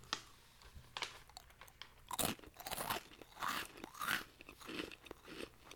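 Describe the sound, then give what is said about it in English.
Loud crunching as someone bites and chews a crisp snack, with irregular bursts of crackly chewing repeating over several seconds and no talking. “I'm so good at doing this, I didn't have to sit there and figure out the logistics of crunching it.”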